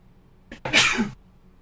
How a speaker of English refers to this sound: Ooh, I sneezed. I'm constantly thinking about the fact that, well, what if I sneeze and I'm on the microphone? But it never really happens. Just now. Because I had a little bit of peanut butter in that peanut butter cracker.